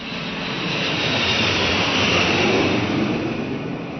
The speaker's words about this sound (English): Around 8:45 a.m., the people along the west side of Manhattan heard a piercing whine of a jumbo jet making its way down the Hudson River.